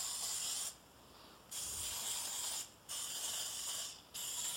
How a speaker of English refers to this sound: I think I'm just going to spray. I only have 12 of these fancy little muffin tin liner things. So I think the rest, I'm going to spray a second muffin tin for that.